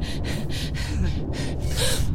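Ragged, labored gasping breaths of an injured woman repeat in quick succession, fairly loud, each inhale a harsh rasp over a low rumbling background with no talking.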